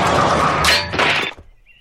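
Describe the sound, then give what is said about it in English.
In a scene from the 1960s TV show F Troop, a cannon firing at a guard tower runs straight into the splintering crash of the wooden tower collapsing: a dense, loud burst of cracking and breaking that lasts about a second, then quickly dies away to quiet. “Yes, so that scene of a cannon firing at a guard tower and the tower collapsing is from the show F Troop”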